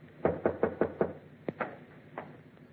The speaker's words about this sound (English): I went upstairs, opened the bottle, and waited for your knock on my door, Commodore.